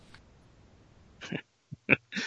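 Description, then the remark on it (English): Several short, harsh coughs in quick succession, fairly loud, with brief gaps between bursts and no talking. “Hold on, I got a cough.”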